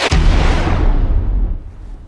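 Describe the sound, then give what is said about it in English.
A single heavy booming impact hits with a sharp attack, then a deep rumbling tail slowly fades over about two seconds, like a cinematic explosion sound effect. “Sound effects, impacts, cash registers.”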